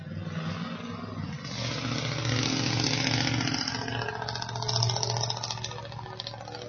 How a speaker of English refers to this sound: That car passed, that loud car. Images, that's an image that just went up the road. Amen. An idol, a false god, where they paid extra hundreds and hundreds, maybe even thousands of dollars to make the truck loud.